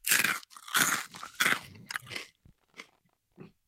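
Loud crunching of crisp food being bitten and chewed, a few heavy crunches in quick succession, then softer, sparser chews trailing off, with no one talking.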